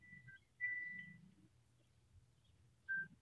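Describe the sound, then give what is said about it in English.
A telephone rings in steady, high electronic tone bursts, one short pair followed by a longer ring and then another brief one, over a low murmuring rumble. “Yeah, the phone's ringing here.”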